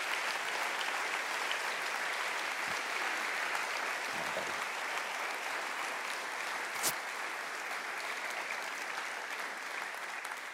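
A church audience claps in sustained applause for about ten seconds for a couple on stage, a dense, steady patter of many hands at an even loudness with no voices standing out.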